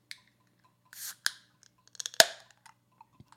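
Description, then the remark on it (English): A 12.5% Magnify Brewing quadruple IPA being opened: a few small clicks and rattles, a brief airy hiss, then a sharp crack of the cap, followed by scattered soft taps. No voices. “we'll open the beer to have.”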